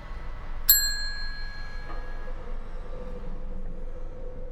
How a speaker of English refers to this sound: Nobody's behind the desk. Oh, here we go. Ring bell for service.